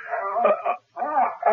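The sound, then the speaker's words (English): A hound named Whiskey whimpers in two drawn-out, high, wavering whines separated by a brief pause, fairly loud and with no talking over it. “what the devil's the matter with this flea-bitten hound?”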